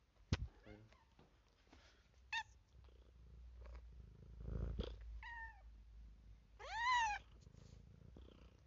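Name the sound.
cat meowing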